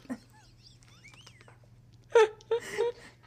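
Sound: sneeze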